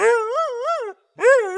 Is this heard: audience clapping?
no